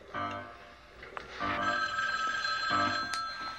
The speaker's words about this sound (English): In the script, she sits down on a chair by the telephone. As in the background, the ghost stands in the doorway. She starts to dial the phone.